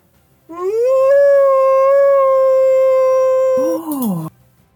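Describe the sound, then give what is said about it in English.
A person lets out a loud, drawn-out howl imitating a dog or wolf: it rises, holds steady for about three seconds, then bends down and cuts off. “And I would like him to howl very loud to try to get the red caps to look at Medusa.”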